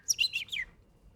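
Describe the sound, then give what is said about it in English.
Four quick, high-pitched chirping whistles, made by a person whistling through their teeth to imitate a bird. They are fairly quiet, with no talking and a near-silent tail. “I can whistle with my teeth as well. Like, oh. Whoa, that's cool. Like a bird.”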